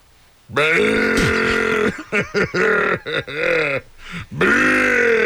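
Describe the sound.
A person imitates a camel with a loud, throaty grunting groan that starts long and sustained, then breaks into a series of choppy guttural bursts before one last drawn-out growl.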